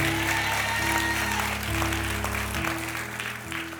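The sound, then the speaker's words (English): A church audience claps steadily for the word of God after a sermon, a dense wash of many hands, with sustained organ or keyboard chords droning underneath and no one speaking. “Clap it up for the word of God.”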